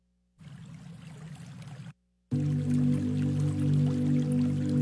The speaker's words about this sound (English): Apparently there's a lot of water running, so this probably is going to make a lot of people want to run to the restroom.